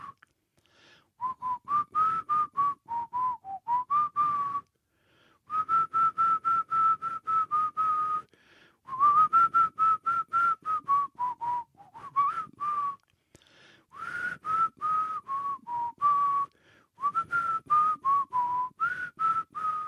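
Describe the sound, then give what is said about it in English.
A person whistles the theme tune of the TV show Friends, bouncy and familiar, in several short melodic phrases broken by brief pauses, a little wavery in pitch, with no one talking. “Right, I almost run out of theme tunes.”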